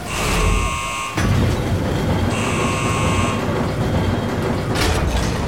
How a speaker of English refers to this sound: Attention, please stay clear. Sealing hydroponics pressure doors in 3, 2, 1...